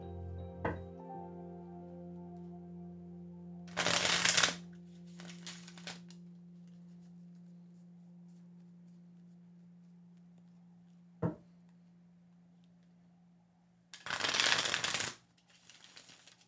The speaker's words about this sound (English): I'm ready. The deck is prepared. Well, it has to be shuffled. It will be prepared in a second.